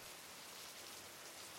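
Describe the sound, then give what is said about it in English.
Steady rain falling outdoors in a street, a constant hiss of drops spread evenly with no pauses, fairly quiet and diffuse, with no voices or other sounds standing out. “And then I push my way out into the open air of the street, the rain dripping over my forehead and my hair, and I stand there, breathing in the free air and open my eyes.”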